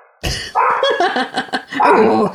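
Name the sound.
dogs barking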